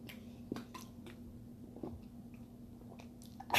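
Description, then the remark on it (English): Quiet sips and swallows of water, a few soft wet mouth clicks and gulps spaced out over a steady low hum, with no one talking. “So 1 second, I'm going to take a water break.”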